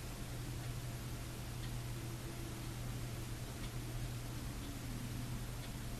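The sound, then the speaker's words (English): Faint, evenly spaced clock ticks sound over a steady low hum and hiss, with no voices present. “An intimate encounter with the clock ticking.”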